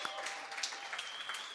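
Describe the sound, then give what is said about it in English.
An audience applauds the speaker's father and mother, a dense, steady patter of many hands clapping at once, fairly soft and even throughout, with scattered sharper claps standing out from the crowd. “Give them a little round of applause.”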